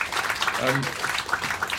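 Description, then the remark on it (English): A steady wash of audience clapping for four panelists at the end of a panel discussion, dense and fairly loud, with a brief voice rising through it partway. “Please, big round of applause for”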